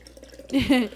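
A brief splash of liquid poured into a glass, lasting under half a second with a gurgling, rising tone before things go quiet.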